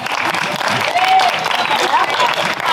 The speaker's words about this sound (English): Yeah, it also sounds like you, yeah, we can applaud. That was great.